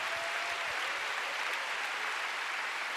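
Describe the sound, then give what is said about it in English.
An audience applauds to give God a big hand, steadily for the full three seconds, a dense wash of many hands clapping at an even, fairly loud level, with no voices coming through. “Let's give God a big hand.”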